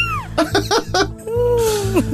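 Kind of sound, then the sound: sound effect, cat meowing sound effect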